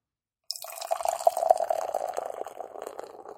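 A hoppy lager with pink guava, 6% alcohol, from the Kentucky brewery Against the Grain, pours steadily into a glass, a continuous gurgling splash that starts abruptly and keeps running for a few seconds, with no voices.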